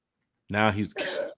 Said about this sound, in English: He did the cough too as well.